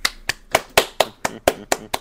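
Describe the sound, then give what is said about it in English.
Hands clapping in a steady rhythm, about nine sharp claps, evenly spaced and fairly loud, with no talking over them. “Standing ovation.”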